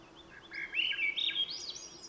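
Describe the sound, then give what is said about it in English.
A Bicknell's thrush, a rare gray-brown songbird, sings a short fluting phrase of thin, reedy notes that spiral upward in pitch, clear, with no voices and only a faint steady hum beneath. “Bicknell's thrush, a rare songbird, a long-distance migrant that winters in the Greater Antilles and summers in the northeastern United States and southeastern Canada, a gray-brown, renowned vocalist that sings a four-phrased fluting song”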